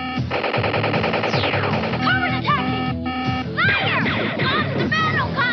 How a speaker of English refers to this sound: Hey, guys! Super Chop G.I. Joe General, a huge mobile battle fortress with working lights and electronic battlefield sounds.